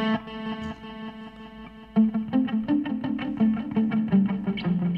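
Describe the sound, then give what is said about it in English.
Distorted electric guitar with a sustained chord ringing out, then a burst of rapid picked notes smeared by repeating echoes, loud with no voices. “The echo on this is very...”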